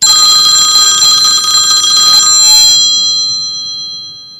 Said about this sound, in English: Phone's ringing. Let's get it.